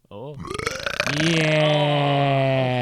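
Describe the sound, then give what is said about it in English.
A loud, drawn-out belch, starting with a rough, gravelly rattle and settling into a long, sustained croaky tone that lasts a couple of seconds. “I'd like for you to say rubbish as you birch or belch.”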